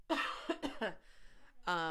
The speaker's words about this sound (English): I'm going to cough again.